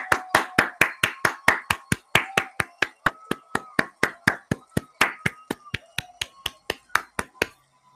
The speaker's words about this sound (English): Come on, let's clap it up for all the mothers.